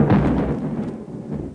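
A low, rolling rumble of thunder from an approaching storm, loud at first and slowly fading over a second and a half, with no voices.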